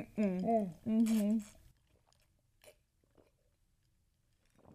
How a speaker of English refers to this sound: Mm-mm. That was a loud gulp. Wow. I'm impressed.